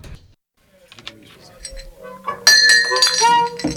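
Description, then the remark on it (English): A drinking glass clinks sharply and rings out with bright, lingering tones, preceded by quiet shuffling and faint voice-like murmurs in the background. “Hey, look out for my glass over there.”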